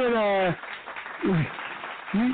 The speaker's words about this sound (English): Let me go ahead and throw some claps on it.